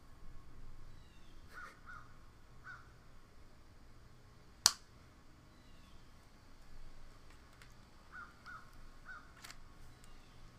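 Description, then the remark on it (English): A crow caws several times in short bursts over a steady background hiss, with one sharp snap-like click partway through. No one speaks. “Well, that bird...”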